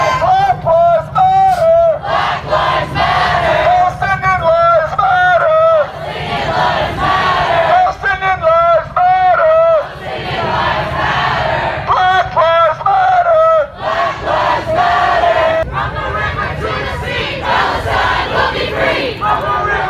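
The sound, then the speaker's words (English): A large crowd at a Black Lives Matter rally chants the slogan "From the river to the sea, Palestine will be free" in unison, loud and rhythmic, the same phrase repeating in steady bursts over a constant roar of voices. “they ended with the chant, from the river to the sea, Palestine will be free, which is the call to destroy Israel.”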